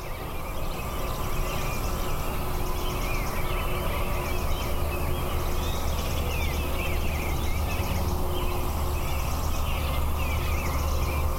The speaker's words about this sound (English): Well, there are a lot more birds there, but it's pretty hard for me to hear them. That's right. But what you do hear is the traffic from the interstate.